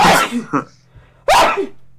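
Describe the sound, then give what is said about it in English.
Two loud sneezes with a short pause between them, each a sharp, breathy burst. “Bless you.”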